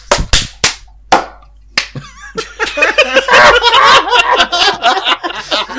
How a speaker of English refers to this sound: I clapped on 3. And then everyone else clapped. Am I doing this wrong?